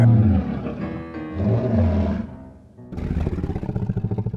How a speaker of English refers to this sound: Is Dougal hypnotizing that lion? 3, 2, and purr.